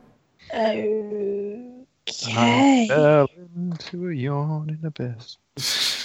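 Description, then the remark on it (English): A voice acts out a pained scream, letting out several drawn-out, wavering cries and groans, ending in a sharp breathy gasp. “Have I heard this scream before?”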